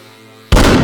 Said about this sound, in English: As soon as they heard a buzz, a whiz and a bang, they knew that Sir Buzz had triumphed